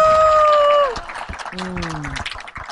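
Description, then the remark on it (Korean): An audience breaks into a burst of dense clapping right after a sustained electronic tone cuts off, welcoming a guest being introduced, the applause continuing loudly with a brief voice or tone sounding over it. “여러분 박수 주세요.”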